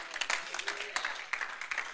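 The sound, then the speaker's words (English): An audience claps to Jesus, a dense patter of many hands with sharper accents recurring every half second or so, sustained throughout at moderate loudness. “Come on, let's clap to Jesus, everybody.”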